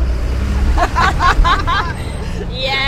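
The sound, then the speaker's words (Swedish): Heavy traffic on the E4 highway rumbles steadily, a deep continuous roar of trucks passing, with brief indistinct voices murmuring over it partway through. “Yeah, sitter mitt på E4 här. Ja, vi låter de här lastbilarna köra på bil.”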